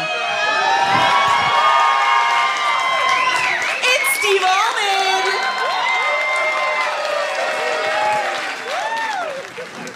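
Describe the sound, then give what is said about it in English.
A large crowd imitates raven caws, many voices overlapping in loud, wavering rising-and-falling calls that continue steadily for the whole stretch over a dense wash of crowd noise. “It's football season, like a raven caw?”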